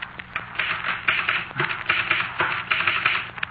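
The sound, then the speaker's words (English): Rapid mechanical typewriter typing, a steady run of sharp key strikes with uneven rhythm, moderately loud, with no voices. “Come here, look at my typewriter.”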